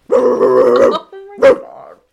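A dog gives a long, rough, growling bark followed by a brief pause and one sharper bark, loud and close, with no talking.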